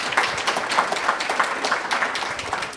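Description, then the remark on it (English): An audience applauds for Texas Supreme Court Justice Eva Guzman and congressional candidate Gina Ortiz-Jones, a dense crackle of many hands clapping at a steady level without letting up. The bright, fast patter holds throughout, and no voices come through it. “Quick round of applause for these two.”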